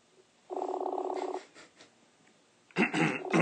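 A Messenger call tone sounds once for about a second, steady and fairly loud, followed by a short pause and then a louder burst of noisy sound as the line connects.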